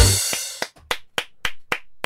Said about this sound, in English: Yes, that is about as much clapping as we generally get when we turn up anywhere.